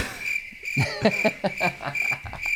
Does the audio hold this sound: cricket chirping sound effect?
yes